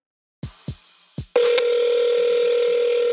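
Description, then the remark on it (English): A few quick clicks and beeps of a phone dialing a company's customer hotline, then a loud, steady, unbroken hum of a telephone line tone that holds to the end, with no voices. “So yeah, let's give them a call.”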